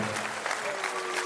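A short burst of audience applause, steady dense clapping at a moderate level for about a second, with a faint tone sustained underneath.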